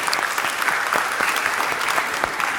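A crowd claps steadily, a dense patter of overlapping handclaps at an even level throughout, with no voices rising above it.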